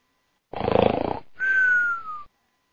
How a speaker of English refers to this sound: He's found the sound effects. Every time you say something I think is boring, I am going to snore.